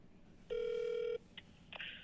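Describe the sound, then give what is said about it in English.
A steady electronic phone tone sounds for just over half a second, followed by a couple of brief, fainter chirps, like an outgoing call connecting and ringing on the line. “We're giving Mickey a call.”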